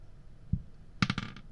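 An eight-sided die, rolled for damage in a tabletop role-playing game, drops onto a tabletop with one soft knock, then clatters through a quick burst of four or five bright, ringing bounces before settling. Fairly quiet, with no voices.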